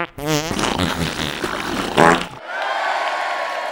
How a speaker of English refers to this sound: Just add in a comedy fart noise and nobody will notice! Good idea.